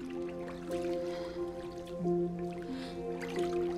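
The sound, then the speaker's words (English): Water softly dribbles and drips with a faint squishing sound as a man uses a sponge to dribble water over a woman in a bathtub, quiet, beneath a steady sustained musical backdrop. “He dribbles water over her breasts.”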